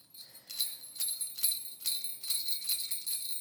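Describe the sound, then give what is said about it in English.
Jingle bells shaken in a steady rhythm, roughly eight bright, shimmering bursts of tinkling metal with a sustained high ring between shakes, and no voices. “All right, let's get our bells out.”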